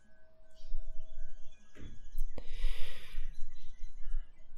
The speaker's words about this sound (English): And I'll be making noises on my end. So you'll hear me hum or yawn or even exhale sharply.